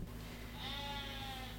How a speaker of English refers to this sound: Oh my God. That's our sheep in the yard right now because we need to move their fence. We have we usually run them in the vineyard, but we need to move the fence out there.